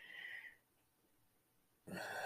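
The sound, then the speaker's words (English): A woman snoring in bed at night, two rough, breathy snores separated by a short quiet pause, fairly loud, with no talking. “Oh, well, the wife is just snoring away.”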